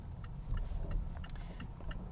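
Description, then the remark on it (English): A car's engine hums low and steady inside the cabin while a turn-signal indicator ticks in a regular rhythm as the car is being parked. No one speaks. “And sorry, I just got to park the car.”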